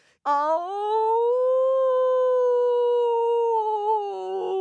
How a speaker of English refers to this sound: And one by one, from all around, across the snowy land, other wolves began to howl. They howled and they howled and they howled.